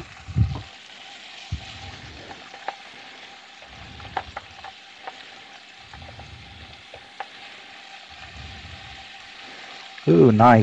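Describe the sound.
Onions and jalapenos sizzle steadily in a hot pan, a continuous crackling hiss with scattered pops, while a voice speaks briefly near the end.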